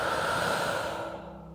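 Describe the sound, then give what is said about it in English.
A single long, deep breath, in through the nose and out through the mouth, with a soft airy rush that holds steady and then gradually fades out, with no talking. “Deep breath in and all the way out.”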